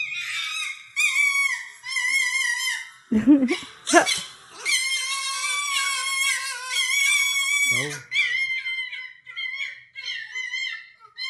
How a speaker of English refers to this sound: That's the two foxes.